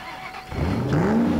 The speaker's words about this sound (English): The sound of this engine, music to my ears. I tell you.